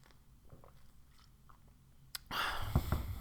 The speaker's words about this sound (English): But yeah, I've been drinking a lot. Let me take a little sip.